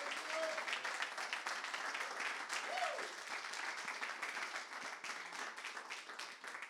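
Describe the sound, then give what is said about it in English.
Sustained applause from an audience welcoming the evening's speaker, Pastor Don Wilkerson, a dense, steady crackle of many hands clapping at even loudness for several seconds, with a couple of brief whoops rising above it. “So why don't we give a round of applause and a welcome to our speaker for the night, Pastor Don Wilkerson.”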